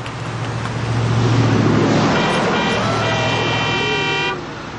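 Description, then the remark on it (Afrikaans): A truck rumbles as it drives past on a street, nearly running someone over, and sounds a long, loud horn blast that holds steady for a few seconds before cutting off, with road noise underneath and no voices. “Die vragmotor het my byna omgeraai.”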